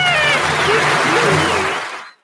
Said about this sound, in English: Yay! That was Kermit doing a little gulp and shudder thing. It's a little hard to hear with the applause